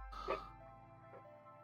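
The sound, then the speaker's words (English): A dog lets out one short, sharp bark, followed moments later by a faint, brief whimper, both fairly quiet against a steady low background hum. “I hate my dog.”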